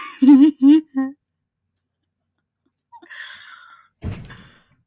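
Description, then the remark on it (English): A door in a house is slammed shut by a man with a single heavy, booming thud near the end, following a few short voiced syllables and a breathy rustle, then quickly fades. “Oh my god, slam the door much. Make the whole house creak, why don't you, old man?”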